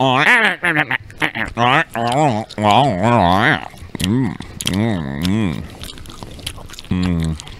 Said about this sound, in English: I'm just going to chew gum. Here's some gum. Everyone chew gum loudly into their mics for the last minute of this episode.